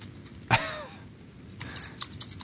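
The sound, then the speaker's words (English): Light keyboard typing, a quick, uneven run of soft clicks after a single sharper knock and a brief descending squeak. No one speaks. “It's a little typey type.”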